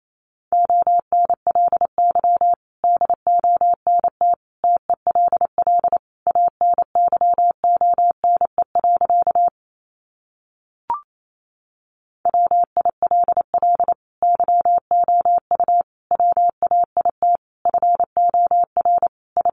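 Rapid Morse code in a single steady mid-pitched tone, fast dots and dashes at 28 words per minute, with a brief pause and a small click partway through before the keying resumes.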